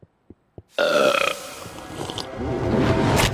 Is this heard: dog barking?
no